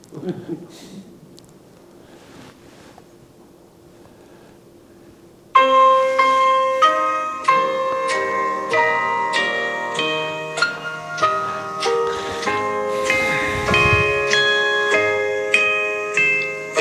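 A recorded song opens with bright chiming bells, struck again and again in a steady pattern, each ring lingering and overlapping, after about five seconds of faint low hum.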